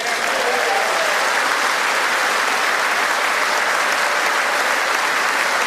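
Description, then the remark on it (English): Loud, sustained applause from a large crowd of Republicans giving President Trump a standing ovation at the State of the Union, Mike Pence among those standing; a dense, steady roar of many hands clapping that holds at full strength for the whole stretch with no voices standing out. “And there, President Trump actually gets a standing ovation from pretty much all the Republicans in the crowd.”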